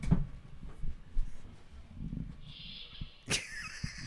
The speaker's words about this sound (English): That's what happens when I walk into the palatial Chicago Geocaster Podcast Studios. I get Star Trek door.